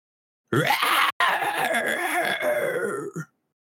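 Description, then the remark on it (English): A monster screeches: a loud, harsh screech rings out for close to three seconds, raspy and strained with a brief break partway, then fades into silence. No voices accompany it. “And down below, as Smokey flies over, you hear a monster screech out.”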